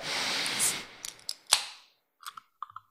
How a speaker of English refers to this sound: Well, let's pop this thing open and get a little sniff test on the watermelon bloom. Sniff test.